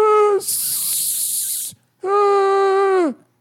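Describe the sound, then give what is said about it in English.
Loud, a voice gives a short vocal sound, then a drawn-out hiss imitating a snake, lasting over a second, followed after a pause by a sustained, tonal voiced noise. “I think that was some hissing.”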